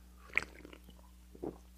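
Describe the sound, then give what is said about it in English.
A quiet sip of a watermelon-flavored Celsius carbonated energy drink: a sharp wet slurp near the start, then a softer mouth sound and swallow a second later, with low hum underneath and no talking. “I want to sleep in like 3 hours, so I'm just going to have one sip.”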